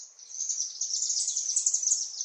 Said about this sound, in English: Every evening at dusk, we're playing recordings of chimney swift songs in an attempt to lure them into the new space.